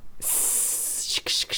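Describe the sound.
Someone hisses like a snake: a loud, sharp, breathy hiss that holds steady for over a second, then breaks off twice in quick bursts near the end.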